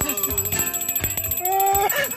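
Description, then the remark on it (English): A bell rings continuously with a rapid, rattling clatter and a bright, steady high tone, fairly loud throughout, with some lower tonal sounds mixed in toward the end. “God damn, that bell got me laughing like a motherfucker.”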